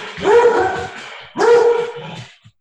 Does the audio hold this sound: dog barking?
yes